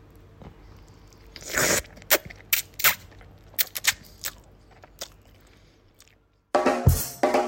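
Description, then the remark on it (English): Someone slurps noodles from a bowl: a long noisy slurp, a string of short wet sucking bursts, a brief silence, then one loud, drawn-out slurp to finish. No one speaks. “I have my bowl of noodles and I'm ready to slurp my way to my first win, slurp my way to Japan.”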